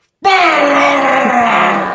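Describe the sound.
A person imitates the old plumbing pipes groaning when a toilet was flushed, with one long, loud, strained vocal drone that starts abruptly and holds steady, slowly sagging in pitch, for nearly two seconds.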